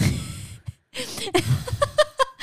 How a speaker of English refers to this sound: I'm breathing heavy here for no reason. I'm sitting down pizza. And I'm breathing heavy over pizza.